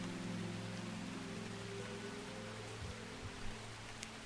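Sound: rain falling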